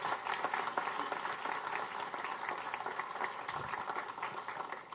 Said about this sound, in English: If you're a leader, if you're an ACT group leader, a catalyst, you can clap for that. That's all right.